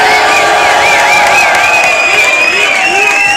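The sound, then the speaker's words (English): A loud crowd cheers steadily after a performance by a UK kid, with high whoops and shouts rising and falling over a continuous roar of many voices, all at once and sustained for the whole moment. “So if you feel what you just heard, everyone, make some noise!”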